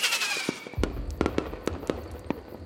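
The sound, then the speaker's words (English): Fireworks set off above a lake at the close of a midsummer ceremony burst in a rapid, irregular series of sharp cracks and pops over a low rumbling boom, with no voices. “Finally, fireworks are set off above the lake.”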